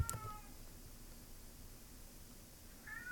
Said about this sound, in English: It's just the cat. Just the cat in my kid's room meowing at my sleeping kid.